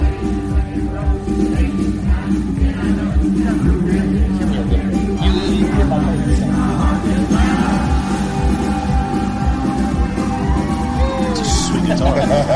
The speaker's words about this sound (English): Oh, the crowd got to sing the last one.